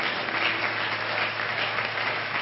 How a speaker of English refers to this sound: Let's give our pastor a big hand clap as he comes this morning.